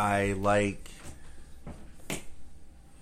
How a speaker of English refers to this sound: open that door. I'm dying of a heat stroke.